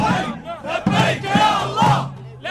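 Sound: crowd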